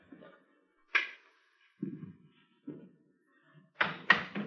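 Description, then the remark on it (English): A door to a room is unlatched and opened: a sharp click, a couple of dull wooden thumps, then a louder rattling clunk as it swings, with no talking. “Open the door.”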